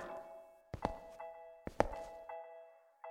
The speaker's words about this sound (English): No answer. She opens the heavy door anyway.